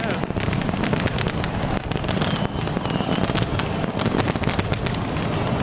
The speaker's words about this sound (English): We're not under attack. Those are fireworks. And certainly a lot of fun to see the celebration of the final home game here at Lavelle Edwards Stadium.